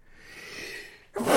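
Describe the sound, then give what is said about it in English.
A single loud sneeze: a drawn-in breathy wind-up for about a second, then a sudden sharp explosive burst at the end. No talking. “Bless you.”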